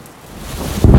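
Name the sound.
thunderstorm with heavy rain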